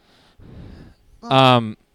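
A single loud, close dog bark rings out after a couple of quieter rustling, breathy noises, then the sound cuts off into silence.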